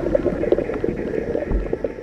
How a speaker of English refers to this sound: That is a recording of a boiling river in the Amazon. In parts, it's almost 200 degrees Fahrenheit, hot enough to kill anything that falls into it.